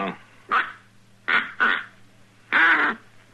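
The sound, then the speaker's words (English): A duck call for hunting ducks is blown in four short raspy quacks, the last one longer and louder, with a faint steady hum underneath. “It takes kind of a knack to blow it.”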